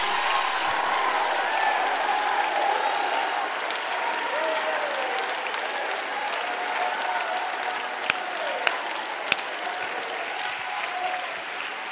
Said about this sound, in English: You ought to get involved like never before. Clap your hands again and shout. Shout, shout, shout with the voice of revelation, understanding.